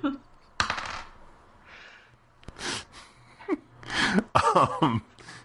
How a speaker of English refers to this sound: How many thousands of damage does it do to my face? A lot of dice to roll.